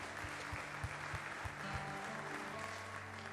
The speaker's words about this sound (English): Can we give all of our guests a welcome today? Give them a hand clap.